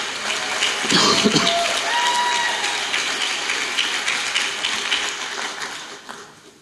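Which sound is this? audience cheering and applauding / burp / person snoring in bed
audience cheering and applauding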